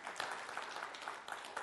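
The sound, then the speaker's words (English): A crowd claps steadily together, giving God a hand, a dense wash of many hands applauding, loud and continuous with no voices over it. “Don't you think we should applaud God for that? Let's give God a hand.”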